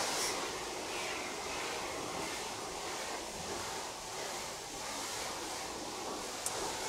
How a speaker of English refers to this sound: every night they come here and power wash the windows and the sidewalks